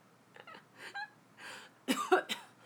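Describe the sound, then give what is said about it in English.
A person coughs several times in a ragged series, starting with softer hacks and building to a louder, harsher burst of coughing near the end, with no talking. “You have the cough now.”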